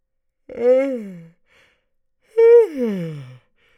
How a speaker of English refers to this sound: I'm tired and I'm yawning a lot.